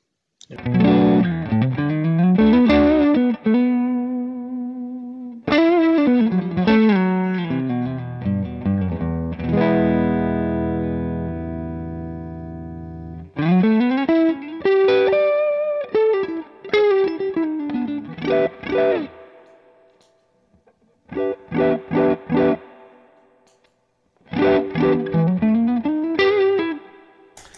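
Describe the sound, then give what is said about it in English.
Loud distorted electric guitar played through a boost pedal that drives the amp into distortion, with the guitar volume rolled down. Crunchy strummed chords and short riffs are separated by brief pauses, and one sustained chord rings out in the middle. “Roll off the front end on the amp a little because it's so sensitive that it's just the slightest bit of boost here and it goes into distortion.”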